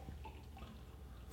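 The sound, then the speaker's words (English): Fresh, slightly hoppy beer pours into a glass in one brief, steady stream, a soft liquid gurgle with faint dripping and no voices. “It's so fresh to pour this.”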